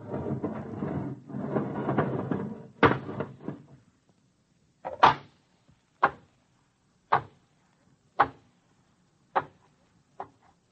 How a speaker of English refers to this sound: Check the lock seal. Okay. All right, open the inner door.